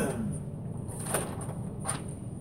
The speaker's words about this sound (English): I hear the door, there's somebody gonna come.